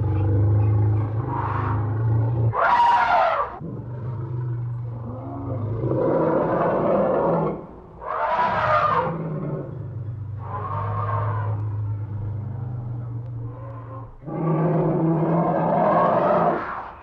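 Deep, steady rumbling from an elephant named Jumbo Jr. runs throughout, broken by several loud, brassy trumpet blasts at irregular intervals, with no talking.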